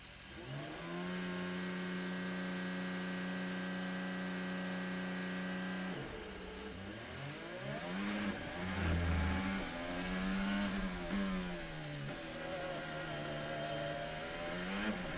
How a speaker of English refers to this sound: Last car now approaching the grid.